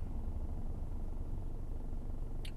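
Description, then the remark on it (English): A car engine runs with a steady, low rumbling drone that holds an even level throughout, with no talking, and a brief faint high tick near the end. “My car sounds fantastic. Can you guys hear that?”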